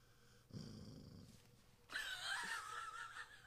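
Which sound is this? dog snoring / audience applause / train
dog snoring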